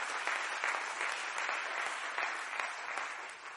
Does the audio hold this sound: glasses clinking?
no